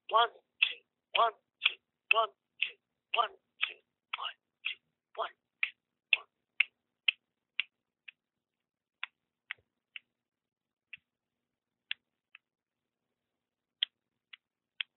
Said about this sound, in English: I'm slapping my hand against my own body, and I don't think I can hear it. Spectators can hear that.